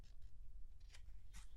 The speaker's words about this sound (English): And I'm turning the page here if there's any noise coming back.